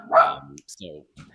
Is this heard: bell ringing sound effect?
no